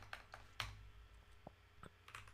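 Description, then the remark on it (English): Typing on a new computer keyboard: a scattered series of crisp clicks and taps at an uneven pace, with one sharper clack near the start and a low steady hum underneath. “Oh, by the way, I also got my new keyboard as well.”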